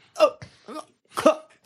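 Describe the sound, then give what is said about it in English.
A voice mimics the coughs of a dying guard run through from behind by a sword: a few short, harsh, wet bursts in quick succession, fairly loud, with brief gaps between them. “Coughs a couple times and then he falls limp on Croft's sword.”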